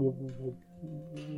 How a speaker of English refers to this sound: There's like interference muffled. On a radio, yeah. There's interference.